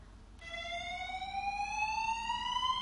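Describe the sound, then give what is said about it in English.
A building fire alarm, played from a video, sounds a steady, piercing electronic tone with bright harmonics, starting abruptly and rising slightly in pitch as it continues, loud and unbroken with a low background rumble. “And so I brought a little video of the fire alarm going off here for you.”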